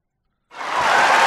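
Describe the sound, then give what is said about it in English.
After a brief silence, a crowd abruptly breaks into loud, dense hand clapping, many hands blending into a steady wash of applause that continues to the end. “Students at the University of Oxford have voted to replace the noisy appreciation of clapping.”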